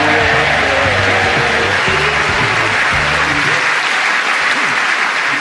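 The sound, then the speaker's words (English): Steady, dense applause from an audience, loud and sustained throughout, with a few tonal music notes underneath during the first few seconds before fading to pure clapping. “Oh, can I say I think you ruined that by clapping?”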